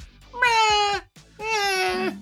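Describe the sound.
A person imitates a cat with two drawn-out, wavering meows, each nearly a second long, separated by a brief pause. The voice is fairly loud, with no other talking.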